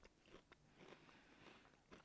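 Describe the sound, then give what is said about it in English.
Crunching of someone chewing crisp breakfast cereal, a steady run of loud, brittle bites and grinding chews with no talking. “So, without further ado, let's get into the cereal.”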